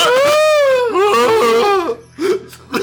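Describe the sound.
A voice imitates a mating call with a long, wavering, high-pitched wail that dips and warbles, then breaks into short breathy yelps near the end.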